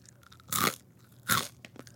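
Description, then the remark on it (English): Two loud, crisp crunches of someone biting into pumpernickel, spaced under a second apart, each a brief dry crackling burst with quiet pauses around them and no talking. “Definitely, that's definitely the pumpernickel.”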